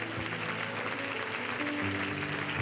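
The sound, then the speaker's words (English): A church audience claps hands for Moses during a sermon, a dense, steady wash of applause that lasts throughout, with faint sustained low musical tones humming underneath. “Clap your hands for Moses.”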